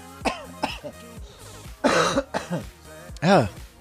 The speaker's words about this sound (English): Still have a little bit of cough from being sick.